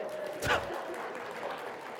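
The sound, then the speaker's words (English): A few people clap sparsely and half-heartedly, with one sharper burst early on, then a thin, scattered patter that fades out quickly over a low background murmur. “That was a pity clap if there ever was one.”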